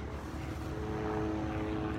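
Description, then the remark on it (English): A helicopter whirs in the distance, a steady low droning rumble with a faint humming tone that holds at an even level throughout, with no one speaking. “Also in the background, you can probably hear there's still a lot of helicopter activity.”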